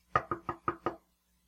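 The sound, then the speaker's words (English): Five quick, evenly spaced knocks on a solid surface, moderately loud, then silence. No voices accompany them. “Why is it knocking?”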